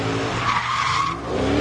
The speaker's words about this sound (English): And he's spinning around. Now, to let you guys know, there's a group of people in the center and a bunch of cars on the outside. So it's like a donut, like you were talking about earlier. And he's burning the tires.